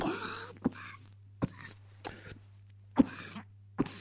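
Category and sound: human body sound, cough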